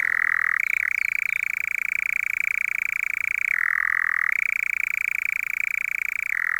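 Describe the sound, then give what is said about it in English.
A nightjar churrs on cattle-grazed open heath at Ashdown Forest in the evening, a continuous mechanical trill going on without a break, steady and fairly loud, dropping briefly to a lower pitch a few times before returning to its higher note. No voices. “So without the cattle, you don't have the nightjar. And how could we miss that sound?”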